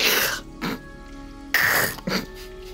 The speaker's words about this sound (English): sneezes again.